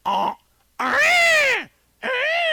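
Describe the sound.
A man's voice imitates a peacock with three loud, shrill, wailing cries, the long middle one rising then falling in pitch, separated by short silences.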